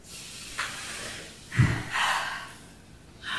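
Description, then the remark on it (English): Airy breaths with soft noisy hisses, one heavier low-pitched exhale or snort in the middle and a longer drawn breath after it, with no talking. “Move with some deep breathing.”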